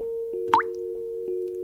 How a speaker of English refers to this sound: So there are moments where a water faucet dripping is the greatest nuisance in the world. It'll keep me up at night, and it'll drive me crazy.